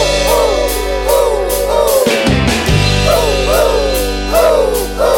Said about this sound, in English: Some animals are loud, but then the owl makes this sound.